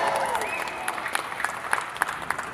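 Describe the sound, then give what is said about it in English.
An audience at Wizard World applauds in a steady, dense patter of clapping with a few sharper individual claps standing out, and a voice briefly sounds over it at the start. “Thank you for giving me the clap.”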